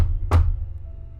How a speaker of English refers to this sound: And just as she starts to turn towards the stairs, a very loud, abrupt knock hits the front door.